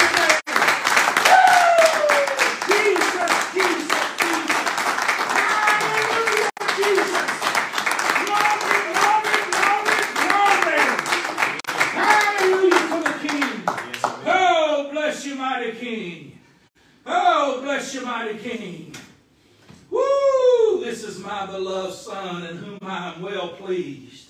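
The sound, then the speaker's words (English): An audience at a sermon gives God a big hand clap, clapping loudly and steadily for about fourteen seconds while voices call out over it, then the clapping stops and a man's voice speaks alone with short pauses. “Give God a great big hand clap.”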